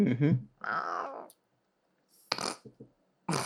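A cat lets out a short cry and then a longer, drawn-out meow, followed after a pause by a few harsh, noisy hiss-like bursts, all moderately loud.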